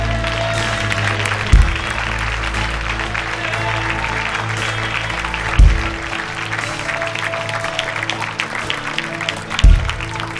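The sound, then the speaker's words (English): An audience at a healing prayer service claps for the Lord steadily for about ten seconds, a dense, continuous wash of hands over a sustained low musical drone, with a deep thump roughly every four seconds. “Now everyone give the Lord a clap.”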